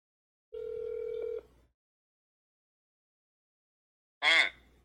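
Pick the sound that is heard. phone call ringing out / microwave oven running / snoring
phone call ringing out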